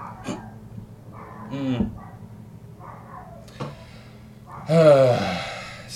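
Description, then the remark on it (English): A female dog barks a couple of times, short bark-like bursts spaced a few seconds apart, the second louder and harsher, over a low steady background hum. “why is she barking? Watch this, it's gonna get picked up, and I moved up here just for that specific reason.”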